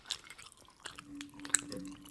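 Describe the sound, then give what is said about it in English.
Wet, squishy chewing of raw honeycomb with sticky smacks and small crunchy bursts, irregular and fairly loud, running for about two seconds without any talking. “You eat so loud.”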